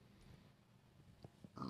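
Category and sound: sound effect, video game pig grunting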